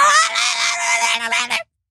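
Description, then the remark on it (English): In a played recording, a 65-year-old woman, head of a US teachers' union, lets out a loud, shrill scream lasting about a second and a half, raw and strained with a wavering pitch, then it cuts off abruptly into silence. “But there she is, screaming.”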